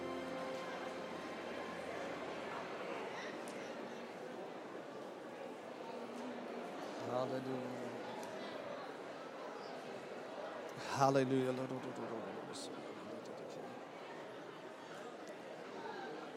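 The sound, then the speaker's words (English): A large crowd of people turning around to greet each other chatters all at once, a steady, dense murmur of many overlapping voices with brief louder bursts of laughter or exclamation rising above the hubbub. “Turn around and greet 2 or 3 people again.”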